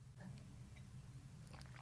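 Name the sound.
sipping rosé wine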